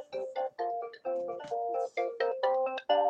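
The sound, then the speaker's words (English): A phone ringtone plays a quick melodic run of electronic tones, short bright notes repeating one after another, fairly loud, with no one talking over it. “So you have that right there, and we gotta let the phone hold up just a second.”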